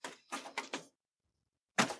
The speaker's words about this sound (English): Go ahead and shut the door